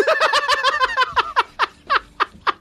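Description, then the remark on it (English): A person imitates a bird with a quick run of high, chirpy tweets, then slower, sharper chirps spaced about a quarter second apart, fairly loud, with no talking. “And then you go to tweeting.”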